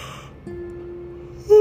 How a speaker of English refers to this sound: Sorry, I yawned.